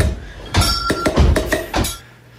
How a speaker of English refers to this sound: It's all right. Definitely a few pots and pans in there. It's catchy.